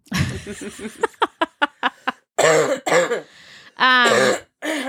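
A person with a cough that has lasted a month coughs and clears their throat in a loud, rough fit: a run of short sharp hacks followed by longer, raspy, strained bursts, with no talking.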